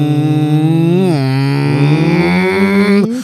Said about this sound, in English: Mm-hmm. More like hum.